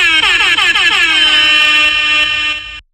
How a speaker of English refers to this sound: That's what I'm going to take this, record this next section, do my air horns,